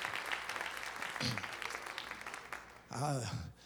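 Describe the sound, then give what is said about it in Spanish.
A church audience applauds together after a closing prayer and amen, a dense, steady wash of many hands clapping for about three seconds before a single voice speaks up loudly over the fading claps. “Dale un fuerte aplauso.”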